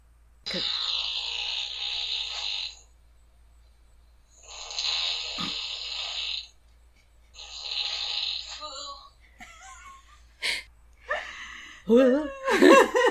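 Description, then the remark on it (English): Loud, rasping snoring of a person with severe sleep apnea, no CPAP in use: three long rough breaths spaced a few seconds apart, then a burst of choking, sputtering gasps and snorts as breathing turns erratic. “So, this person obviously has a severe case of sleep apnea.”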